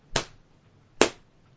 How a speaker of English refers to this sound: Oh, I just slapped my thigh. I don't know if you heard that.